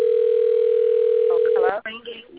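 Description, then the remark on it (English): A steady telephone ringback tone of an outgoing call hums over a narrow phone line for under two seconds, then cuts off as a recorded Verizon Wireless announcement begins speaking. “Somebody's ringing. Somebody's ringing.”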